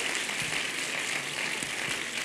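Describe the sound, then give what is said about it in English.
A crowd claps together loudly in a dense, steady patter of many hands, sustained without pause for a couple of seconds with no voices over it, as a church audience is urged to clap their hands real loud during a sermon. “Clap your hands real loud!”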